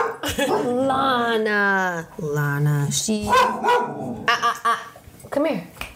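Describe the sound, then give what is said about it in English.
A dog named Lana, a Doberman-Chihuahua mix of about 35 pounds, barks and makes drawn-out, yowling vocalizations, followed by a few shorter sharp barks, while a person talks over it. “She likes to tell me when people are walking past whatever house we're in. She's Doberman Chihuahua, so she's Dobie Wawa.”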